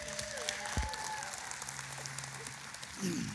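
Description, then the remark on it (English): Steady audience applause, a dense wash of many hands clapping at once, sustained for a few seconds with a brief swell near the end and some faint voices mixed in. “And let's give him one more hand clap.”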